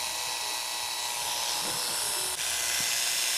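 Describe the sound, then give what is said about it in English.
Electric hair clippers run with a steady, unbroken high buzz and a faint hissy edge, holding an even loudness throughout apart from a brief dip partway through. No one speaks. “No, but like, the machine itself doesn't vibrate as much.”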